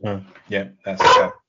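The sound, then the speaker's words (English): A dog barks three times in quick succession, loud, the final bark longer and more strained, almost a yelping howl. No one is talking. “That's what your dog thinks of my singing.”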